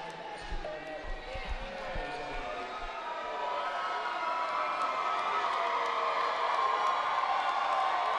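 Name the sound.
basketball crowd cheering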